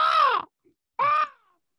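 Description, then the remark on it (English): A person imitates an eagle's cry with two loud, screechy calls. The first is longer and falls in pitch, and a shorter one follows after a brief pause. No talking accompanies them. “That was an eagle in the can.”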